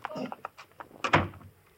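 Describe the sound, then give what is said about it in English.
A side door of a house is unlatched and swung open, with a few small clicks and rattles followed by a solid thump from the handle and frame. “They said they'd leave the side door open.”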